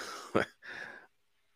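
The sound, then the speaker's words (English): A single sharp, deliberately faked cough, followed by a short raspy throat-clearing exhale, fairly loud, with no talking around it. “He felt like they were legit until the Ghost Cough.”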